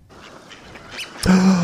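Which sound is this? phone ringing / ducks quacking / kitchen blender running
ducks quacking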